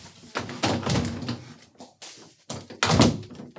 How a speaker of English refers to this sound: I gotta close the door.